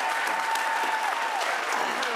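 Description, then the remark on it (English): Steady applause from a studio audience for Drew Barrymore after she says she believed E.T. was real, a dense wash of many hands clapping at an even level for the whole stretch, with a faint tonal whine running underneath. “This conversation goes on for like 3 minutes, but it's funny when people just applaud Drew Barrymore going, I believed E.T. was real.”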